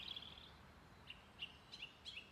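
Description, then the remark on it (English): Birds sing and chirp in budding spring woods by Route 23, home to cardinals, robins, bluebirds and blue jays; a trill at the start followed by several short, bright calls repeating at irregular intervals over soft background hiss. “The trees are budding if you look closely, and the birds are singing up a storm, so to speak.”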